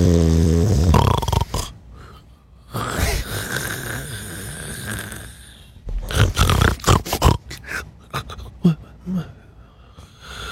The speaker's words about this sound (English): That's me snoring.